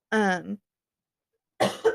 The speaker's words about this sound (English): coughed instead, I guess.